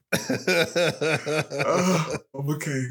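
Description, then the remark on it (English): A loud run of rapid, rhythmic coughs and throat clearing, several harsh voiced bursts in quick succession, then a brief pause and one more strained clearing of the throat. “Make one friend cramp up, the other one have a coughing fit.”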